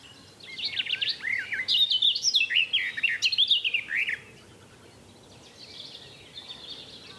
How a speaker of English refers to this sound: Thank you, Mr. Garden Warbler.